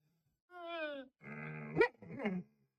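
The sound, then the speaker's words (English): A dog makes three drawn-out grunting, groaning vocalizations in quick succession, each about half a second long, moderately loud, with a sharper peak near the end of the second. “This dog is so. Can you guys hear it?”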